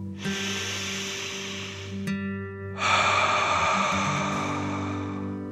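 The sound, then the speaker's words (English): A single deep breath as a relaxation breathing exercise: a long, airy inhale through the nose filling the belly, a brief pause, then a fuller, louder exhale out through the mouth, over a soft steady background drone. “Breathe in through your nose, filling up your belly, and then out through your mouth, imagining you're breathing fire.”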